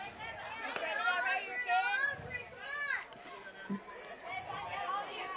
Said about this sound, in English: I'm getting a little crowd noise. Giving a little hitting instruction.